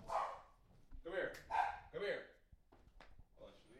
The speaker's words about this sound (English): Hold on. He's going away. What the fuck are they keep barking at? I don't even hear anything.